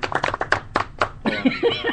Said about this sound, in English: So I want a round of applause. Absolutely. Studio audience loves.